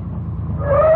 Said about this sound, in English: I remember my relief when I heard the car coming.